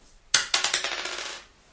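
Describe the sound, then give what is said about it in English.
Dice for an attack roll, including a D4, clatter across a hard table, a sharp first hit followed by a quick run of rattling bounces that fade out within about a second. Fairly loud, with no voices. “Dice are weird. 9 and a D4.”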